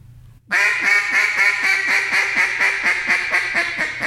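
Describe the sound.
A loud series of rapid, nasal hen-duck quacks from a duck call imitating an old boss hen sounding off, about fourteen evenly spaced notes in a steady rolling cadence after a brief low rumble.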